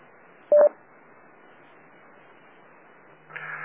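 A single short DTMF touch-tone beep, dialing a 9-1-1 autopatch call, cuts through steady radio hiss, followed by a few seconds of static before another brief tonal burst begins at the end.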